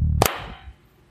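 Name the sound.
hand clap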